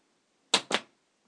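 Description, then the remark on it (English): Two sharp handclaps in quick succession, crisp and bright with a short ringing tail after each, standing alone against near silence with no voices; the clap bit from the TV show Community. “For those listening, that was the clap from Hugh Community.”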